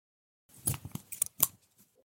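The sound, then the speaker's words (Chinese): Scissors snip through the thread of a trouser belt in a few quick, crisp cuts, each snip a sharp metallic click, then a brief quiet. “看阿咧洗的时阵，一条裤带摸来摸去，摸到有一位丁丁高高，毋知啥物，用剪刀甲线剪开。”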